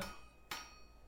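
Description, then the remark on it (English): A single sharp metallic clang, like a struck bell, rings out once midway through, with faint high ringing tones hanging in the background. No one speaks. “Do you hear that, Ishan? Yes, we've now retconned that as bells, weirdly.”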